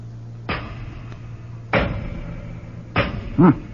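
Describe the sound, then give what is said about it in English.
Three heavy, evenly spaced hammer blows strike solid doors to test how thick they are, each a sharp thud with a booming, lingering ring. A brief vocal grunt follows the last blow. “Let's see how thick they are. Throw me a hammer, would you?”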